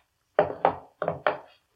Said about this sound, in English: Then he got up, took out his gun, laid it on the table.